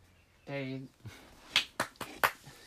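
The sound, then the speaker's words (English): A brief voiced sound, then a short burst of four or five sharp, loud hand claps at an uneven pace, a small round of clapping that quickly stops. “I finally got a round of applause on this fucking show.”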